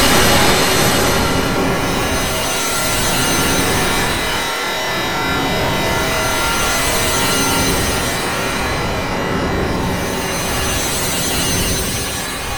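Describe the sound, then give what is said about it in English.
A loud, continuous machine roar of the Fab Radio International time engines starting up and malfunctioning: dense grinding, hissing and rattling that surges and churns steadily for about twelve seconds, with no voices. “So, I better fire up those Fab Radio International time engines and see just where...”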